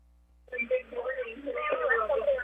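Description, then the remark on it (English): After a brief silence, a radio plays over a phone line, its voice-like sound thin, tinny and band-limited. It runs steadily at moderate loudness, with a low hum underneath. “stop listening to the radio. Listen to your phone.”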